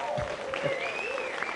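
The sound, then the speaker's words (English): An audience at Orchard Church applauds itself for attending on a holiday weekend, in a steady, dense wash of clapping that holds at an even level throughout, with faint tonal sounds drifting underneath. “First thing you need to do is give yourselves a round of applause for being here on a holiday weekend.”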